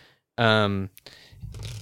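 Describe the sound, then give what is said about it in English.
A brief voiced hum comes first, then a short, soft rush of shuffling as a Garbage Pail Kids novelty deck with thin card stock, cards larger than normal tarot cards, riffles together for under a second. “It has sort of a shuffle that feels a little flaccid, I would say.”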